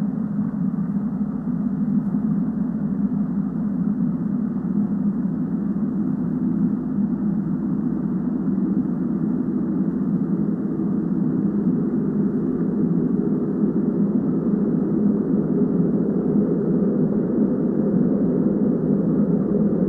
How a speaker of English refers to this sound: But I normally play the trailer now before, but if you know anything about this movie, the trailer is literally just noise. Yeah. It's a great trailer, though. So I'll just play the drone for you for a minute.